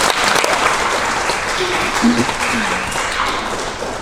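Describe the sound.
A crowd applauds steadily to congratulate the class of 2020 ring recipients at a Founders Day celebration, a dense, even wash of many hands clapping that holds a constant loudness for the whole stretch, with a faint murmur of voices underneath.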